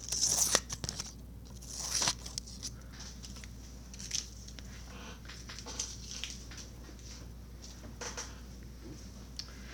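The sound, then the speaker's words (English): Scissors snipping as ASMR, a few crisp cuts near the start then lighter intermittent snips and rustles, recorded quietly with no talking. “That's scissors.”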